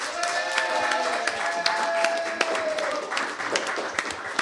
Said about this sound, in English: Now on to the red team, the unfortunate losers of tonight. Can we give them a round of applause anyway?